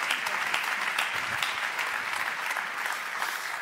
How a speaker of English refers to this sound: Come on, let's clap to Jesus some more.